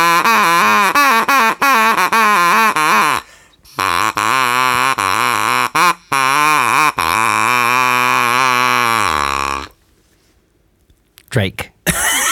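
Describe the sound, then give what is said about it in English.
A duck call sounds a drake imitation: loud, buzzy, nasal quacks with wavering pitch, running in quick bursts and longer drawn-out notes for about ten seconds, then silence and a couple of brief clicks. “A Drake. That was the first thing I ever played on a duck call.”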